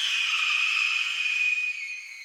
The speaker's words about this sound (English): And here's a red-tailed hawk screech.